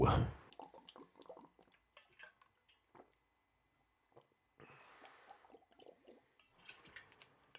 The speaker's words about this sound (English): So that was a good little sip of water.